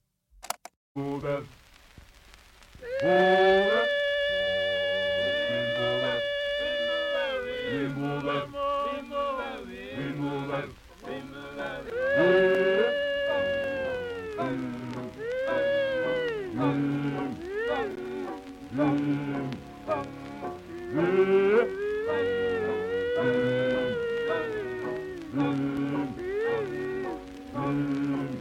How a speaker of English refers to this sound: sings the high notes over the deep voices, a melody he improvised on the spot.